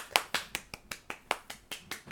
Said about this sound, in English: Give it up, give it up. Clap, clap, clap, clap.